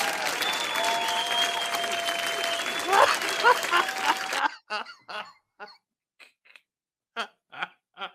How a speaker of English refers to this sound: They're clapping. Why are they clapping? This is stupid.